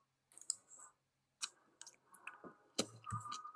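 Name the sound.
chewing a crunchy snack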